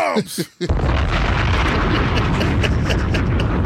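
bomb explosion sound effect

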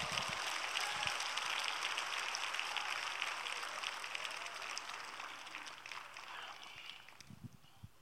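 audience clapping

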